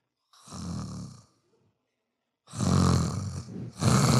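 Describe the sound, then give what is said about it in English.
A voice imitates a man's snoring as it grows louder during the night, in three raspy, breathy snores, each louder than the last: a moderate first one, a pause, then two harsher, fuller snores close together. “Every second, my life gets a little worse because his snoring becomes slightly louder.”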